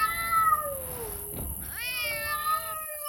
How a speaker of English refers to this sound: Cats. Feral cats. The island was overrun with them.